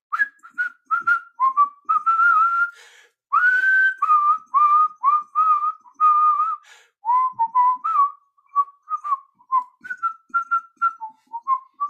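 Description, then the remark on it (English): A person whistles a lively tune, the clear pure notes hopping up and down in quick phrases with brief pauses between them, and no talking. “Well, if you're feeling down in the dumps a little bit, what if you start whistling a tune?”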